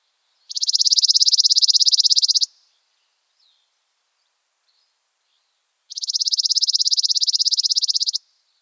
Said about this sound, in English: Chipping sparrows sing a long, dry trill of evenly spaced, mechanical-sounding chips. The speed of the trill can vary.